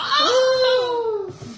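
A voice imitates the Wilhelm scream as a character knocked out of the sky goes flying off: one loud, strained wail that leaps up in pitch, holds, then slides slowly downward for over a second before breaking off.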